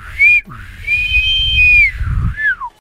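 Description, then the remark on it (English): A referee's whistle blows three times, loud, signalling the end of play: a short toot, a long sustained blast, then a final shorter one, over a low rumbling background. “If this were a real bit of extra time, this is where the ref will blow the whistle because it's finished.”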